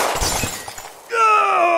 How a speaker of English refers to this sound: You shot me! You shot me in my glass skull plate! The one the doctors used to save my head from falling in on itself!